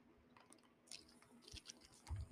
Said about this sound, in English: That was me drinking out of a water bottle.